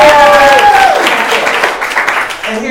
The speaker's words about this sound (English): So by applause, how many of you want that?